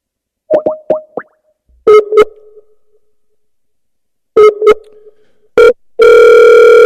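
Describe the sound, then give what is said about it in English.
A Skype incoming-call ringtone: quick bubbly, plucky melodic tones in two repeating bursts with a pause between, followed by a sustained buzzy electronic tone. Loud, no talking. “Hey, call on Skype.”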